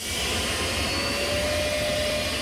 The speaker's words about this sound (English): That's not a jet plane, but a gas turbine-powered 1963 Chrysler turbine car. Only three running examples of the bronze two-doors are in existence.